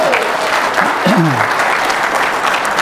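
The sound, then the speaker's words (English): An audience breaks into a steady round of applause for the praise band, dense clapping filling the whole stretch at a strong, even loudness, with a brief voice or whoop sliding through the middle. “Wow, give our praise band another round of applause, would you please?”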